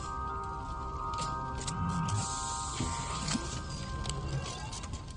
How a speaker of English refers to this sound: This is a Bacta spray. It will heal you in a matter of hours.